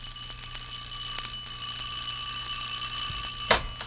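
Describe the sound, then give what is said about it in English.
A doorbell rings in one long, steady electric peal with bright, high metallic tones that hold for about four seconds, ending with a brief sharp clack. No one speaks. “Don't you ever answer the doorbell?”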